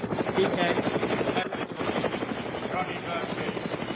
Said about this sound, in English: Wait. I see a helicopter coming. Oh, shh. Be quiet.